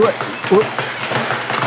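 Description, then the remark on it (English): A voice imitates a punching bag being struck, making a quick run of short, breathy thumping bursts mixed with a couple of voiced grunts, fairly loud and steady for under two seconds. “can you sound like a punching bag?”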